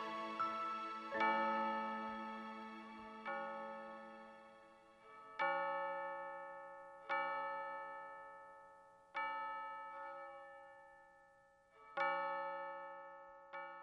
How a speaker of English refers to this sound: Church bells here? I've got to ring those bells.